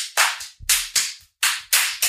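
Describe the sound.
A quick run of about seven loud, sharp hand slaps on the top of a head, imitating an Indian head massage, fired in an uneven, hurried rhythm with brief gaps between them, with no talking.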